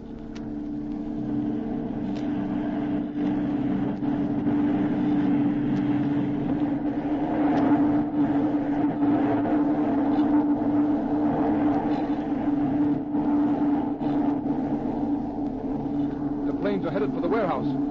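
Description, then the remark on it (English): A car engine hums steadily and fairly loudly for the whole stretch, a constant low droning rumble with a tonal edge, as a car turns into a garden. “See, his car has turned into his garden.”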